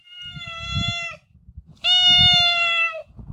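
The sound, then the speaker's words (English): A cat lets out two long, drawn-out meows, the second louder and more insistent, with a short pause between them and faint low rumbling underneath. “Sorry, now I got to pet the cat to keep talking.”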